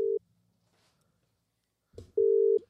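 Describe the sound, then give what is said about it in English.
An outgoing phone call's ringing tone: a clear, steady electronic tone pulses twice, the bursts separated by a long pause, with a faint rustle and soft knock just before the second. “I'm ringing Gibber. Bring him in.”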